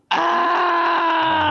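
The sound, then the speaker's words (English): A person lets out one loud, sustained scream as the lights shut off, starting abruptly and holding at a steady pitch for about a second and a half, with no talking around it. “I scream when the lights shut off.”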